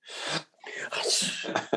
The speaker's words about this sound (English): Just like, well, that's how I sneeze now.